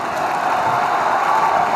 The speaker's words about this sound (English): Give him some applause here. This is an outstanding performance.